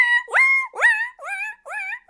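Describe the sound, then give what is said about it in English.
A woman's voice imitates a screeching pig with about five shrill, nasal squeals in quick succession, each one swooping upward in pitch, loud and alone without any talk. “That's a screeching pig.”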